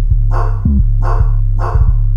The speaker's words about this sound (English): It was a very rhythmic, distinct bark.